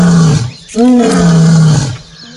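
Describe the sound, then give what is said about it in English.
A lion roars loudly, one long, deep, rumbling call that swells in the middle and holds for about two seconds before trailing off. “It's not a walrus, no, and it's not an elephant. It's actually a lion.”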